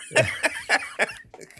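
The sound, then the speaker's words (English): A quick run of about four harsh coughs in a steady rhythm, followed by a few softer, trailing hacks as the fit winds down, set off by a tickle at the back of the throat. “Something like tickled the back of my throat and I could not stop coughing.”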